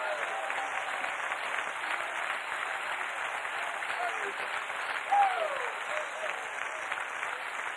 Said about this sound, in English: Clap your hands again.